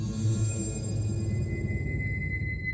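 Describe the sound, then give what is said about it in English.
A dense wash of radio static during a pilot's radio call to ground control fills the whole stretch, rumbling and crackling loudly and drowning out his words, with thin steady tones whining high above the noise and no voice audible. “And we don't know how that sentence ends because this huge burst of static drowns out whatever he was going to say.”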